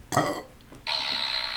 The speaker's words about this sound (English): I'm gonna burp.